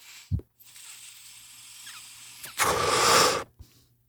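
A Chirp electric dab pen, started by inhaling, vaporizing Chirp sauce concentrate: a soft thump, a faint steady electronic hiss with low hum, then a loud sizzling crackle lasting about a second before a brief click.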